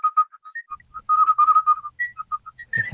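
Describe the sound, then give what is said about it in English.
A whistled rendition of the hunting tune the Paul Storm Gallop, as used in an ad for a BMW Mini car, clear: quick bouncing staccato notes, a brief held run in the middle, more hopping notes, then a rough noisy burst at the end. “And the for that track, they used my version of the Paul Storm Gallop. The Paul Storm Gallop being that the hunting tune.”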